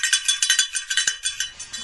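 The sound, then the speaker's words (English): Two handheld noisemakers are shaken in a quick, steady rhythm, producing bright, clattering metallic bursts about a dozen times, fairly loud and with no voices over it. “Stomp, instead of cheering and chanting, stomp clap or bring handheld noisemakers instead.”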